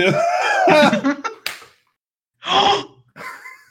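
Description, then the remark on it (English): One sharp, playful love slap lands right after a stretch of breathy, drawn-out vocal sounds, followed by a pause and a couple of short gasping exclamations. “I'm hearing slap.”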